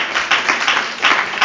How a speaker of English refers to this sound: Could we clap our hands unto him right now?